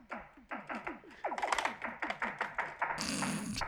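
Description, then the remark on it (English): Built-in electronic drum sounds from a circa-1990 Casio keyboard, which has two octaves and no drum pads, play a quick, steady beat of thin, echoing hits with a built-in echo that cannot be switched off, ending with a hissy cymbal-like crash. No one speaks. “Here's what the drums sound like.”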